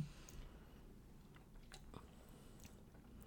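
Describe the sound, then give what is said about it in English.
Quiet mouth sounds of a woman sipping a Vizzy spiked sparkling water, a few soft slurps and swallows over a low background hum, with no talking. “She's taking another sip.”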